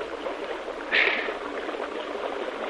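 People wading through river water, with a steady rush and slosh of moving water and one brief, sharper splash early on. No one speaks.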